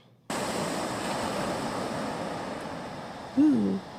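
A steady, full wash of ocean surf starts abruptly and rolls on without pause, with a short hooting tone near the end. No one speaks.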